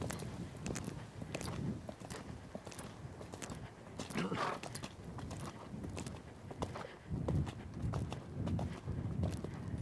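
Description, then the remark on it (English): Steady hoofbeats of a young horse under a rider, a continuous rhythmic clip-clop on soft ground, with a low rumbling undertone and faint, indistinct voice in the background. “Nothing needs to be dramatic on a young horse, just smooth, little at each time.”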